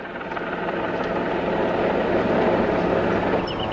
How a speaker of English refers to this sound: After dropping off the detectives, the helicopter was supposed to pick up the coroner's office personnel. But the pilot got a distress call.